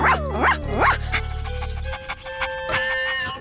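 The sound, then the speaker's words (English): A dog named Hobby barks three times in quick succession at the start, fairly loud, over a low rumbling hum. Quieter tonal sounds follow, and no one speaks. “And so does Hobby, don't you, you funny doggy?”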